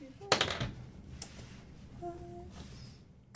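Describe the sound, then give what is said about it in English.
Many dice clatter across a table during a tabletop role-playing game in a quick burst of sharp rattling clicks, followed by a few scattered knocks and a final clack as they settle. “Yeah, lots of dice to roll tonight.”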